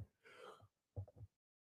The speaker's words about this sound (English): If I'm starting to yawn, yeah, the fatigue from work is starting to kick in.